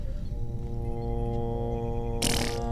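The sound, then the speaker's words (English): A long, buzzy fart sound effect drones steadily for a couple of seconds, then ends in a louder, hissing sputter. No one speaks. “No, I just like the fart noise.”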